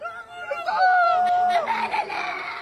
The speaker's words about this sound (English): And on Friday, more heartache came with these devastating scenes at a Shifa hospital complex. The haunting screams of those who survived this blast, dazed, confused, searching for loved ones amongst the dead and injured.